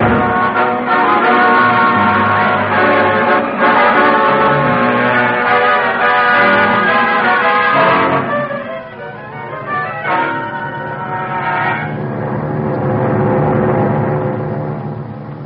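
A loud, sustained bell rings with rich overlapping tones that swell and decay, the ringing continuing steadily throughout with no voices.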